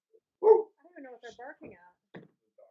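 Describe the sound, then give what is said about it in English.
A dog barks once, sharp, as it walks by, then a person starts talking over a quiet background. “a dog walked by, God forbid.”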